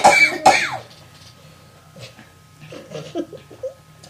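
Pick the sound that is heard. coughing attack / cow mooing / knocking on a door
coughing attack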